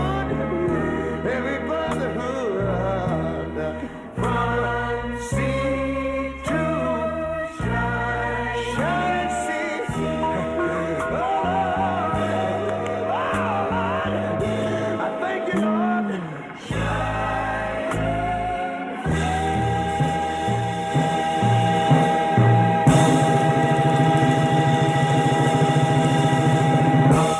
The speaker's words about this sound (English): What a great rendition of that great song, America the Beautiful.